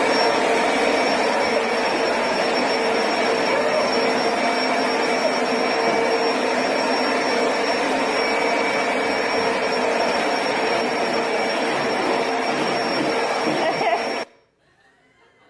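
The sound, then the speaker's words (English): A pastor vacuums; the vacuum cleaner roars steadily for about fourteen seconds, a dense whooshing drone with a faint high whine, then cuts off abruptly into near silence. “So proof that pastors actually do vacuum.”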